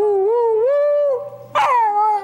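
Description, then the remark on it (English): LBJ's dog Yuki howls in long, wavering, high-pitched notes, singing a duet with a high-pitched singing voice. The sound is loud, with a sharper rising cry breaking in near the end. “Yuki would react to a high-pitched voice and would sing along with it.”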